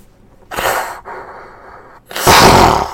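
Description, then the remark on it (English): A voice imitates a hippocampus (sea-horse creature) sneezing in the water near a harbor: a breathy wind-up and a drawn-out nasal build, then one loud, explosive burst, with no other sounds. “One of them sneezed.”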